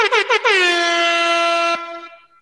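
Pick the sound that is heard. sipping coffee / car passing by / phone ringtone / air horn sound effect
air horn sound effect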